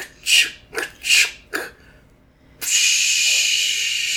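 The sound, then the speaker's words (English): A voice mimics a steam train with four short rhythmic breathy hisses, followed by a sustained, loud, steady hiss of escaping steam after a brief pause. “It's a steam. I heard it.”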